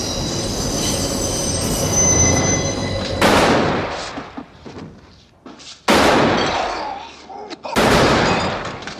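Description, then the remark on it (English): A train rumbles by with high metallic wheel squeal, then three loud, sharp gunshots ring out a couple of seconds apart, each echoing away as the train noise continues underneath, in a film scene where a man shoots two men as the train passes. “It's the scene right before Michael shoots Salazzo and McCluskey.”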